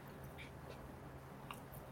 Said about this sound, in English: Well, is if you've had a protein bar, it's not going to melt in your mouth. It's a little bit of a chew, a little work.